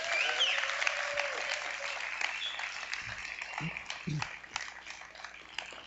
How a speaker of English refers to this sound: Thank you so much, gentlemen. God bless you. Give them a big round. Come on, a big cheer.